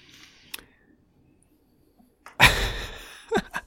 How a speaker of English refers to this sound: So yeah, they just knocked over an old iMac computer that we don't use anymore.